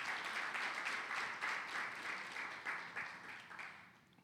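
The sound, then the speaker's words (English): An audience at a morning church service gives a clap offering to God, with steady, dense clapping that holds for a few seconds and then gradually tapers off, with no voices. “Give him a clap offering this morning, amen.”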